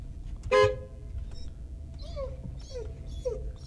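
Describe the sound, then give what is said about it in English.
An aggressive dog gives three short, whiny yelps at a steady pace, preceded by a brief loud honk-like blast, with low background rumble and no talking. “Hey, yo, that's even an aggressive dog.”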